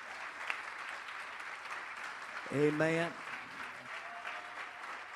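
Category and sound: crowd, audience clapping hands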